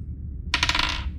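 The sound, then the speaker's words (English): A quick clattering rattle of several dice, rolled for three attacks in a game, tumbling across a hard table surface, fairly loud, lasting about half a second before settling, with no voices. “That's a lot of dice.”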